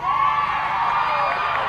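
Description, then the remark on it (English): A crowd at a softball game cheers and shouts in a steady, dense roar of many overlapping voices as a pitch is thrown with two out in the seventh inning, holding at a constant loud level for under two seconds. “You can't go off the crowd reaction.”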